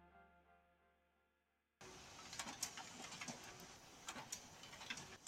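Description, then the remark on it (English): A short musical tone fades out, then a printer starts up with a steady mechanical whir, broken by repeated clicks and clattering bursts as the pages feed through on a long print job with about 120 pages still to go. “Do you hear my printer in the background?”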